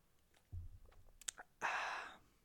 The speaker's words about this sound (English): let's go. Let's get a nice sip of this Coors Light before I start.